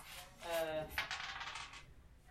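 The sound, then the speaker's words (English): Dice clatter and tumble across a table in a quick, bright rattle lasting about a second and a half, then settle into quiet; the dice are rolled for damage in a tabletop role-playing game. “5 plus, you can roll that dice plus, again.”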